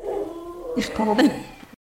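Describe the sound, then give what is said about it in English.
A dog that has just burst in whimpers, a thin, wavering whine lasting under two seconds and broken by a couple of sharper yelping bursts before it cuts off. “Now another dog just burst in.”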